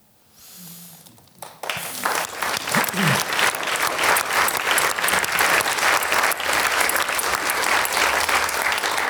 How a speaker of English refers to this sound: I just want to thank very much, a big round of applause.